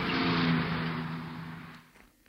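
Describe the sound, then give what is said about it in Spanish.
A taxi's engine hums and accelerates as it pulls away onto the Diagonal in Barcelona, a steady rumble with a broad whoosh that fades out near the end. No voices. “Me observa por el retrovisor negando con la cabeza, pero arranca. Y toma la Diagonal.”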